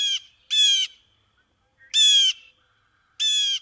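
Harsh, nasal blue jay calls ring out in four loud bursts, each about a third of a second long, separated by irregular pauses, with no other sounds around them; a blue jay of Brooklyn, New York City.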